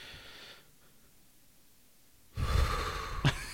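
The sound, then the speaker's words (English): After a near-silent pause, a person lets out a loud, heavy breath, a rough drawn-out exhale with a sharp gasp-like catch near the end. “Like, that was my literal response when right. I saw it was just heavy breathing.”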